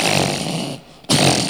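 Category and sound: vocal imitation, imitated snoring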